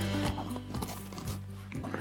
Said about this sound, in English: As you might be able to hear, a little bit of water running in the background, a little bit of snow crunching underfoot.